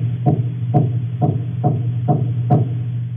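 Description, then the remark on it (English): Grey snapper larvae make a series of six soft, evenly spaced knocks, each a short dull tap, over a steady low underwater hum, with no voices. “And we've got a nice little recording here of the little baby grey snapper larva making their sound. So this is a knock, as you call it.”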